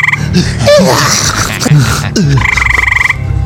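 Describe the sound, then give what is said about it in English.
A dense, busy chorus of croaking and shrill cackling from the witch and her rabble, layered together and loud, growing louder toward a crescendo, ending in a fast pulsing run of croaks. “Cackles and croaks grow toward crescendo as Hazel hands the key, or rather, the mouse, to Oz.”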